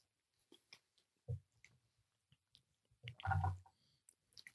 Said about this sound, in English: There's a reason we're drinking this whiskey, and we'll get into it later. But for right now, why don't we take a sip and just get on with the show?